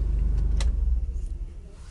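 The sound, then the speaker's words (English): A car engine rumbles low and steady, a sharp click sounds, and the idle fades as the car, parked at work, is switched off, leaving quieter background noise. No one speaks. “Car off. At work. Parked.”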